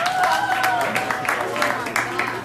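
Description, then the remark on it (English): An audience claps steadily for a couple of seconds for Spencer Dinwiddie as he is introduced, a dense patter of overlapping claps with some voices calling out over it. “Clap it up for Spencer.”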